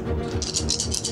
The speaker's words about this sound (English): Can't let that dude roll dice.